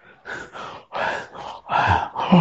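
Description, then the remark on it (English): A man imitates heavy breathing, a run of about six loud, rough, gasping breaths, each a broad noisy burst growing stronger toward the end. “Was the breathing?”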